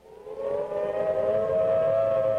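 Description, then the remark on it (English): A civil defense air raid warning siren, the signal warning of enemy planes, wails alone, its tone climbing slightly in pitch before holding a loud, steady, sustained note with rich harmonics. “Our civil defense workers and our men in uniform will do everything they can to warn us before enemy planes can bring a bomb near us.”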